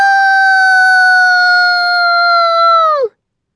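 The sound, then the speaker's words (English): A dog chasing a rabbit lets out one long, loud, steady howl that holds a single high, clear pitch for about three seconds, then slides sharply downward and cuts off into silence. “I howl and take a giant running leap.”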